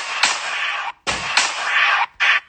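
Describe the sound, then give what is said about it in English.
Loud, rapid gunshots, seven in all, fired at a man's back, crack in a quick volley, with the sharp reports blurring into harsh bursts of noise separated by brief gaps. No one speaks. “You can hear the gunshots 7 times a man's back.”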